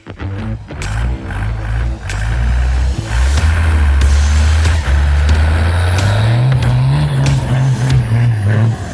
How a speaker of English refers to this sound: Goes great with those car sounds of Brad Stapp's 1991 Dodge W250 with a Cummins 12 valve. And Brad is just killing it with the car sounds, sending a bunch of them in.